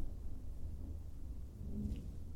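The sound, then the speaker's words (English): A deep, continuous rumble of thunder rolls beneath a steady hiss of rain, forming a dense, even storm backdrop with no voices. “Fun, even, if that's not too insensitive, which doesn't really help in deterring me from fulfilling my desire of watching the storm from beneath it in a flat, flowering meadow.”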